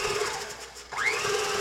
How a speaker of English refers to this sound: And then beat after each egg. So here we go. Doesn't have to be like really beaten, just mix it in really well. Here goes egg number two. And beating again.